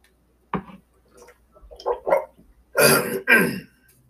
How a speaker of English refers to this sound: Let me clear my throat here like ….